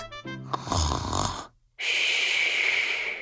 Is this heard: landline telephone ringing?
no